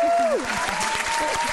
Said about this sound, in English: I love the round of applause. Brilliant.